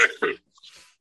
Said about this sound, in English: Gesundheit.